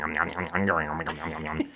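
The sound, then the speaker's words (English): A voice imitates a whip-like creature attack sound effect, a cross between whip sound effects and the Attack of the Killer Tomatoes sound effect: a fairly loud run of warbling, swooping vocal tones with rising and falling pitch that lasts under two seconds. “And this is a cross between sound effects of whips and a sound effect of the Attack of the Killer Tomatoes sound effect, which is like this.”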